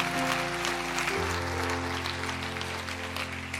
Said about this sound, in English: And while you got your hands in the air, clap them real big.